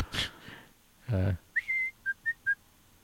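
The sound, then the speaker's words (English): A short whistled 'Hallelujah' tune, a stock audio clip from AudioJungle: one held, slightly rising note followed by three quick, clear notes, fairly loud, after a brief noisy burst and a low buzzy tone. “That was just someone whistling hallelujah.”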